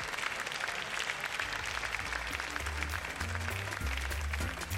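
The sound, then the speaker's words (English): A crowd on its feet applauds steadily after a singer's performance with her band, a dense, continuous wash of many hands clapping that holds at an even, fairly strong level throughout, with a low droning undertone beneath it. “Nevertheless, with the help of her band, she got the entire place on their feet during her performance, and they remained there, applauding well after she was finished.”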